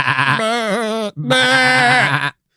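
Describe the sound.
A goat bleats twice, loud and wavering, each cry lasting about a second, the second one following right after a brief pause.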